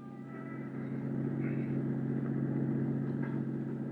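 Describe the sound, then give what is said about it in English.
A car engine hums steadily at low, even revs, a continuous drone as the car cruises slowly through an area street by street, with faint rattles and road noise and no voices. “So I decided to cruise that area street by street.”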